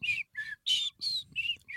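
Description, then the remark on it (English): A person whistles through their teeth in six short, breathy, high-pitched bursts, each sliding slightly in pitch, separated by brief pauses. There is no talking. “I could do the between the teeth one, but it's not as cool.”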